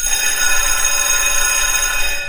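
A loud alarm bell rings continuously with a bright, metallic clatter, sustained at steady volume from start to finish with no pauses and no voices.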